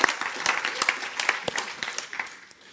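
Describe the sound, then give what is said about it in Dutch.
A crowd claps steadily for a few seconds to give God a hand, many hands making a dense, fairly loud applause that fades slightly toward the end, with faint voices mixed in. “geef God een applaus. Come on, give God a hand.”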